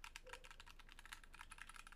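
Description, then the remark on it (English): Rapid, steady typing on a mechanical keyboard, with crisp clicky keystrokes in a quick irregular rhythm, moderately loud, with no talking. “Yeah, it's a nice Yeah, that's looking a pretty keyboard.”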